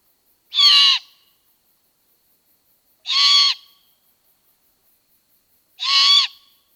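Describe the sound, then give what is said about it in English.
Three harsh, raspy screeching calls from a young great horned owl begging its parents for food, evenly spaced about two and a half seconds apart, loud, with silence between them. “So if you hear something like this in your neighborhood late in the spring into early fall, that's a young great horned owl trying to get its parents to bring it some food.”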